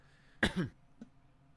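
A single loud, harsh cough bursts out close to the listener, followed a moment later by a brief, faint throat sound, with quiet background between them.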